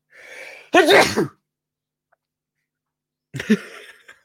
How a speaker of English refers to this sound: I'm going to sneeze. Hang on.